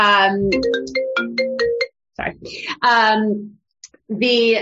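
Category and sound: signal or alarm, phone ringtone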